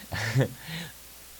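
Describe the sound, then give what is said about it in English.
A single sneeze: a sharp voiced burst with a hissy breathy edge, then a softer exhale trailing off into quiet. “Bless you. Bless me.”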